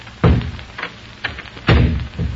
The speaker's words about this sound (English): A moment. I close the doors.